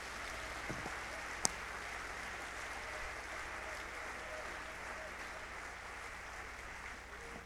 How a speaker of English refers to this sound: Clap your hands, everybody, unto the Lord.